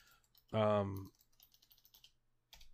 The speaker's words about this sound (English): Made a tweeter just to follow y'all. Hells yes. That's exactly what I'm typing.